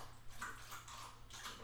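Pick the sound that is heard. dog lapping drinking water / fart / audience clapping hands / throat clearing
dog lapping drinking water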